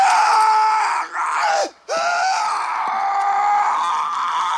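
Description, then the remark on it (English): Will Smith screams loudly and at length in a movie scream recording made on a soundstage about 3 feet from the mic. His strained cry breaks once for a quick gasp of breath before the scream resumes and holds steady to the end, with a slightly roomy sound. “scream”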